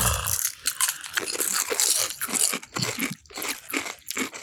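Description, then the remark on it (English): Loud, crackly crunching of potato chips being chewed, a dense run of sharp bright crackles with brief pauses, lasting the whole stretch with no talking. “And then, like, they all are, like, whole chips. Like, there's no broken chips in here.”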